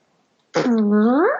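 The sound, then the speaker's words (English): After a moment of quiet, a single loud, sustained voiced honk imitates a foghorn, holding a steady low buzzing tone for nearly a second before sliding upward and cutting off. “My favorite is the foghorn. You have to do it with the action.”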